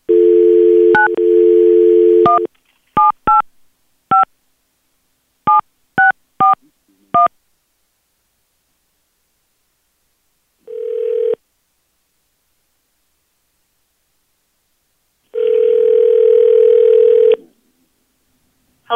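A steady dial tone gives way to a quick series of short, two-pitched keypad beeps as a radio show dials a phone number to call someone, followed by a brief tone burst and a longer ringback tone, with no talking.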